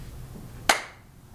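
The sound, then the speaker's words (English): A single sharp hand clap to sync a recording rings out against a low background hum, with a short bright decay trailing off afterward. “Do you want me to clap it in?”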